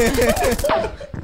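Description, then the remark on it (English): A rapid, rattling burst of gunshot sound effects fires loud over overlapping voices, then trails off before one last sharp crack. “I'm ducking the gunshots right now.”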